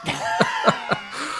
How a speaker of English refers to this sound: Just a fit of coughing.